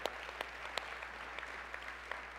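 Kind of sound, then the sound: crowd, audience applause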